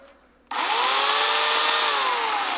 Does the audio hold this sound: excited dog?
no